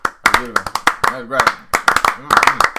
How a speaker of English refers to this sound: But first of all, let's take a moment, pause, and let's just have a little slow clap for this clever name.